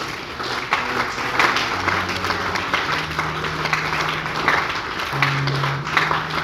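A large crowd claps and applauds for God steadily for several seconds, a dense, continuous wash of hands with a low sustained organ-like tone humming underneath.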